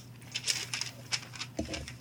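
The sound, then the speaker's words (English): A piece of paper rustles in a quick series of crisp, crinkly bursts, some sharper than others, with a low steady hum underneath and no talking. “Yeah, you can cut out the sound of the piece of paper.”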